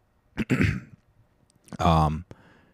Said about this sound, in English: I didn't hit the cough button. Sorry.